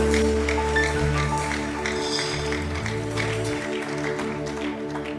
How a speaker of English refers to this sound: Give God a good clap offering. Your clapping is not good.